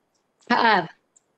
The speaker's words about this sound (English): Sorry. Coughing a little bit tonight.